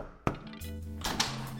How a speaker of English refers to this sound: He had arrived at a beautiful castle. This castle belonged to a rich and evil ogre. In fact, the ogre owned all the lands that Puss had claimed as the property of the miller's youngest son. Puss knocked on the door.